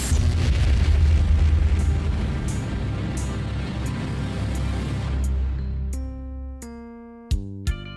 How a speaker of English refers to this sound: but now, the Cosmic Long Box opens, showering us with weird, crackling energy, which means it's back issue review time in the Ziggurat.